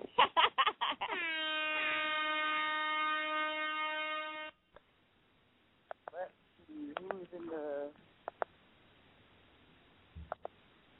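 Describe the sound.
A sound-effect air horn fires a rapid stutter of short blasts, then holds one loud, brassy, sustained blare for several seconds before cutting off. Scattered brief clicks and a short voice follow.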